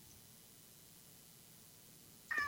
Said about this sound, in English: the divine cat, spoke up. No, she's been calling me. I haven't fed her yet.